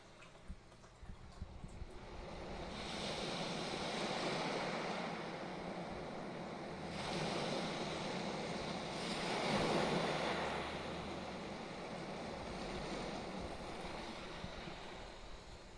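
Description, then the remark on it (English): Ocean waves crash onto the shore in slow, rolling surges, each broad wash of surf swelling and then fading, with a steady low rumble and some wind underneath. “Watching the waves crash in.”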